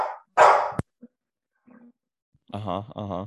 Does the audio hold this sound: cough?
no